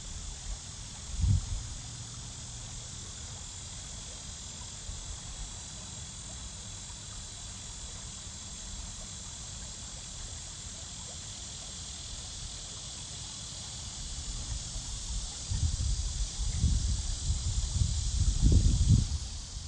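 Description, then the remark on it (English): Summer Saturday afternoon ambience at Gully Park along the Niakasa Creek, with temperatures in the lower 90s: a steady, high-pitched insect chorus drones throughout, joined by a few low rumbling bursts early on and again near the end. No one speaks. “Saturday afternoon, as temperatures poked into the lower 90s, Gully Park was pretty calm, but still a great place to stop and soak in a few moments of summer bliss along the Niakasa Creek in the middle of the park.”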